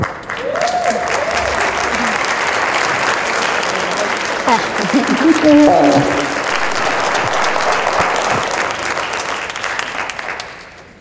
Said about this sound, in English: No, take it. Our applause.